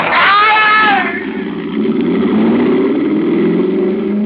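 A short, high tire screech slides downward at the start as a Mercedes skids on a wet road, then its engine roars up loudly and keeps climbing in pitch as it accelerates, with no talking.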